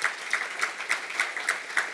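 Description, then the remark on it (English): A group applauds, a dense patter of clapping with one sharper clap repeating at a steady, quick rhythm above the rest. No one speaks. “Maybe a little bit of applause.”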